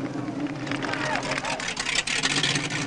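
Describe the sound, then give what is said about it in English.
Police cars roar as they approach, a dense, steady wash of engine noise and rushing road sound with muffled voices mixed in, loud throughout. “Calling all cars, calling all cars. Leaving a big mug and heading your way. Here come the cops.”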